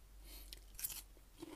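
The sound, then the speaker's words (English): Quiet crunching as someone chews a mouthful of soft noodle salad with crunchy tomatoes and celery, a few crisp bites standing out against soft chewing; no talking. “It's soft noodles and this crunchy tomatoes and crunchy celery.”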